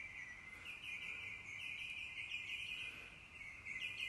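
A steady outdoor chorus of birdsong: a continuous high, trilling tone with occasional brighter chirps above it, fairly quiet and even throughout, with no voices.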